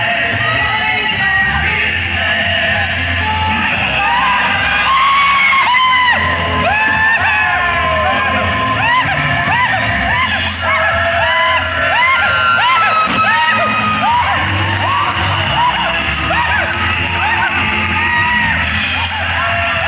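A man screams and yells over and over, loud and high-pitched, in rising and falling whoops and wails with a steady rushing noise underneath, while riding a Sky Coaster amusement ride.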